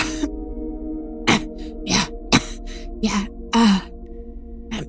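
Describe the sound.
A voice acts out a man straining to clear his throat while nodding: about six rough, raspy, breathy bursts with grunting undertones, spaced irregularly over a low steady hum, moderately loud.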